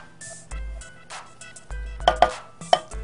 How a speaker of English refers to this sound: So while I'm showing you how to chop up the chocolate, we're gonna get our cream heated up.